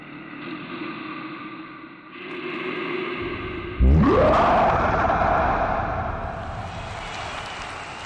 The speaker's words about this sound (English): I retreat backwards, feeling my confidence wane as the bear seeks the moonlight, steps into the center of the ring, and begins its own transformation with an almighty roar.